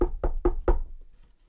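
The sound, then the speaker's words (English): A door sound effect: four firm knocks on a door in a quick, even rhythm, the last one slightly heavier, followed by a brief quiet tail with no voices. “So this is you knocking at my door, right?”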